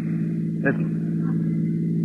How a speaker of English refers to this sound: Listen. That sounds like cars. Probably police cars. We're just about to be sensationally rescued, just like fiction.